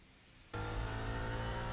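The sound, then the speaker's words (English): After a brief near-silence, a car engine abruptly roars to life and revs loudly and steadily, filling the rest of the moment with a deep rumble. “We also get a chance with the noise of the engine to, offer up that the language of the thriller”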